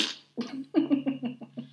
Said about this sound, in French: Ah oui, j'étais très gênée parce que je n'ai pas pété. Tout le monde a cru que j'avais pété en public et je ne savais pas me retenir.